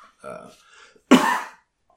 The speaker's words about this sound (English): I coughed and it fogged up my glasses. It flugged up my glasses, buds. My glasses are all flugged off.